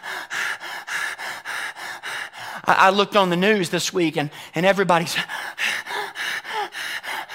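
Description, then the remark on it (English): A voice imitates heavy panting with loud, rapid, rhythmic breaths, roughly two per second, that pause briefly while a man speaks and then resume. “He'll begin to strengthen you as the deer pants for water.”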